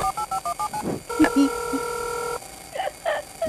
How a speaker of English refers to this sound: Oh, hearing the sound of a modem connecting.